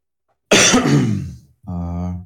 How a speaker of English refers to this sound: But I am through that part and on to the, I just have to cough everything out of my chest now.